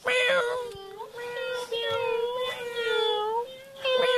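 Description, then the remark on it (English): A human voice, asked to make noises like a kitty cat, imitates a cat, drawing out a long, wavering meow with bright harmonics, followed by shorter mewing calls that rise and fall, loud and continuous with no other talk. “Now, on a count of three, I want to hear noises like a kitty cat. Be a kitty cat.”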